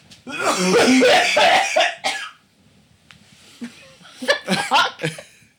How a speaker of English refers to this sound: I'm dying. When somebody coughs in a Christmas special, they're dying.